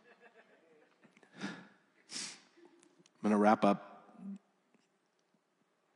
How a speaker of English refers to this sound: It's a bit of a long, sorry, I'm sniffling. No surprise at all, I'm crying.